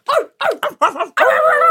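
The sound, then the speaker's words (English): A young voice imitates a dingo barking: four quick yappy barks, then one longer drawn-out howl-like bark, loud with no other sounds. “Dingo dogs barking. Can you bark like a dingo dog”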